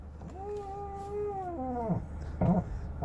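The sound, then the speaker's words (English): A car engine noise from under the hood: a single drawn-out, husky-like howl rises and holds for over a second, then sags downward over a low mechanical rumble, followed by a few short, rough bursts of noise. “Customer states, it sounds like a husky under the hood.”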